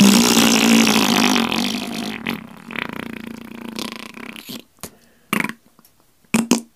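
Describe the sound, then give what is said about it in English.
A voice imitates fart sounds with the mouth: a long, loud, buzzing raspberry that sputters out, followed by several short, sharp pops with brief silences between them. “The only man in the world who can make 1,000 fart sounds with his mouth.”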